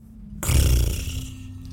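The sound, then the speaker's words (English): A voice imitates a scary animal sound, a rough, breathy purring hiss that starts abruptly, swells loud with a rumbling low end, then slowly fades over about a second. “Like almost like purring, hissing. Yeah, a strange purring hiss, and then a resounding one from the opposite end of the camp.”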